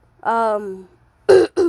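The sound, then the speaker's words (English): A fairly loud voiced throat-clearing rumble, followed by two quick, sharp coughs in succession. No speech. “Sorry about that cough.”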